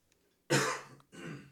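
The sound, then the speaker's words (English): Two quick, harsh coughs, the first louder and the second following after a short pause, with no talking around them. “So when you just turned your mic off to cough.”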